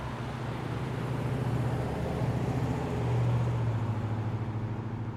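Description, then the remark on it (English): A loud Dodge Ram pickup truck rumbles past, its deep engine drone steady throughout and swelling briefly as it draws nearest, with no voices. “A loud Dodge Ram pickup truck drove past.”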